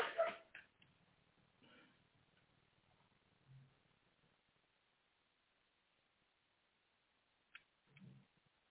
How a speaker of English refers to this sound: Apologies for that. My dog has his own opinions as well.